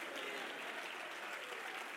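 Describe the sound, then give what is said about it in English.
An audience at a church service claps their hands in a dense, steady wash of applause, loud and sustained with no distinct individual claps standing out, and no one speaking over it. “Would you clap your hands and shout hallelujah?”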